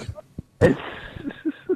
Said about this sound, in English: You got to stop coughing into the microphone.